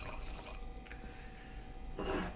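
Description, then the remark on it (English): Vanilla and coffee bean bourbon barrel Dark Apparition beer, brewed and bottled by Jackie O's in 2020, pours from a bottle in a soft, steady liquid trickle, quiet, swelling into a brief louder gush near the end; no one speaks. “I'll give you a smaller pour.”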